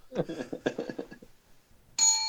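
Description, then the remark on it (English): People talk briefly, a short pause follows, then a single bright bell ding strikes loudly and rings on with a clear, high, sustained tone. “I think that's the bell that signals that we're going to play the lullaby soon.”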